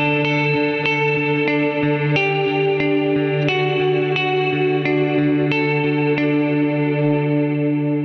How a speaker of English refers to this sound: And so the H9 is sort of a kind of does-it-all algorithmic kind of reverb and delay kind of system. I think it does distortions and stuff.